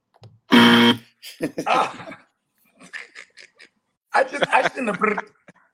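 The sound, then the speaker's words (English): A single loud, harsh game show buzzer blares for about half a second, rich and nasal in tone, as a contestant buzzes in during a football trivia quiz, then people start talking in bursts. “I shouldn't have buzzed in.”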